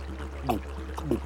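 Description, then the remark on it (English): Three quick watery gulps or slurps, a big swallowing sound effect of a frog drinking up a river, over a low steady hum. Short and fairly quiet, with no talking. “So he drank up another river.”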